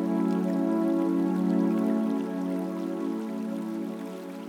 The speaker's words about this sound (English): A gentle rain begins to fall.